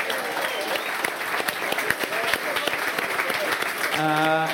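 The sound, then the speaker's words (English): A crowd at the close of an evening event breaks into sustained applause for themselves, a dense, steady clatter of many hands clapping at once, with a voice rising over the clapping near the end. “Give yourselves a round of applause, first and foremost.”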